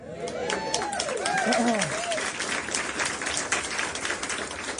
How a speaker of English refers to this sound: That's pretty good sizable applause there. That's pretty good.